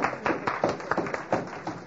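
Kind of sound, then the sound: crowd, audience applauding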